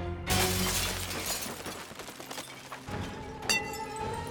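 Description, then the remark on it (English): The glass covers of a room's lights shatter with a sudden loud crash, followed by a sustained spray of shards tinkling and scattering down onto a stage and audience, with a second sharp crash near the end. “The lights in the room became brighter and brighter until the glass covering them shattered, raining down on the stage and the audience of three.”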